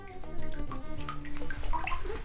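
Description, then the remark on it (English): Bathtub water sloshes and splashes as a cat is lowered in for a bath, a steady watery churn broken by scattered bright little splashes, with no voices. “Okay, here he goes into the water.”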